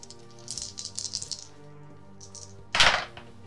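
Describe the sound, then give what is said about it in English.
A quick run of light rattling clicks as dice are shaken for a roll in a tabletop role-playing game, a short pause, then one louder clattering burst as they are thrown and tumble to a stop, coming up 6. No one speaks. “I am going to use my technology skill to put them in my backpack, and I'm going to use one of my cool dice.”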